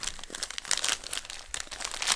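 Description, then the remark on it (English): Crinkly plastic product packaging rustles and crackles continuously as it's pulled and torn open, a busy, uneven stream of sharp crinkles with no voices. “Probably should have got scissors for this.”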